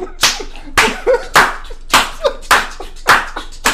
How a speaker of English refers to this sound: Ooh, it's still in me. That Baptist clap still in me. You know what I'm saying? Still there. Still there.